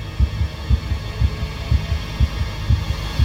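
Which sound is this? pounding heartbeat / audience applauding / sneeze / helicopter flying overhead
pounding heartbeat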